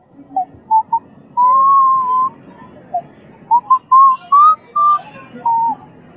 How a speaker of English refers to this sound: And I hear you're a good whistler? Yep. Can I hear?